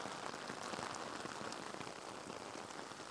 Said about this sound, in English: Boy, it's raining heavy here, guys. You hear this shit? Oh, yeah, dude. Sounds gnarly.